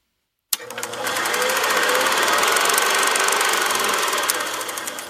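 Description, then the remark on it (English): A steady mechanical whir of tape being cranked and rewound starts abruptly and runs on, a fast rattling buzz with a rapid ticking pulse, loud and even throughout, with no voices. “I'm cranking the tape. Back. Roll it.”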